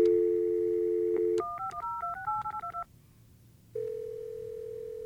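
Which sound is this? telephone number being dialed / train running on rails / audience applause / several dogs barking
telephone number being dialed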